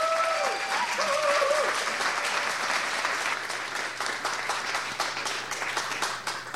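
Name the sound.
audience round of applause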